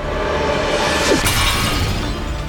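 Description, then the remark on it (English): A single sharp shattering crash bursts out halfway through as a sword blade swung down at a monk shatters in midair, a bright metallic break with scattering debris over a dense, steady wash of background noise, no voices present. “and shattered in midair.”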